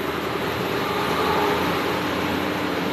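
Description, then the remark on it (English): Ventilators of a large-scale cooling system inside a seed vault come to life and hum loudly and steadily, a dense whooshing roar with a low droning undertone that holds an even level throughout, with no voices. “Inside, suddenly the ventilators of a large-scale cooling system come to life, humming loudly.”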